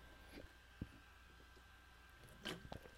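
Someone takes a quiet sip of a drink, with a small lip click and then a short wet slurp and swallow. No one speaks.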